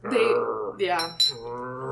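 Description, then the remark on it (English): A person imitates a vampire's guttural growl, three rough, throaty vocal bursts in quick succession, fairly loud, each one gravelly and drawn out like an animal's snarl. “It's like a guttural growl.”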